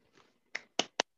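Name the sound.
hand claps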